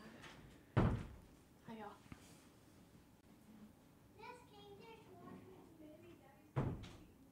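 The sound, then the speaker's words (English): A door thumps shut with a solid bang, then a second knock lands a few seconds later; a child's high voice chatters softly in between. “Can you close the door, sweetie?”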